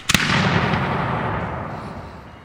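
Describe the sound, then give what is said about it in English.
A cannon salute is fired once from the ship Vasa as she casts off on her maiden voyage with 4 of her 10 sails set: a sharp, heavy boom followed by a long rolling rumble that slowly fades over a couple of seconds, with no voices. “Finally freed from the land, 4 of the 10 sails are set and a salute is fired.”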